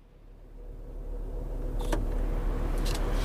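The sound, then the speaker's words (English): A car's low engine rumble swells steadily as it pulls away, with a couple of sharp mechanical clicks from inside the vehicle partway through. No one speaks. “No point in taking 2 cars.”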